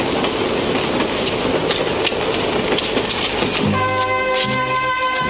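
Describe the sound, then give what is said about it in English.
An underground train carriage rattles along with a steady roaring rumble and scattered clicks and clatters, then a droning, harmonic whine rises over the noise near the end. No one speaks. “I feel like I'm on the underground.”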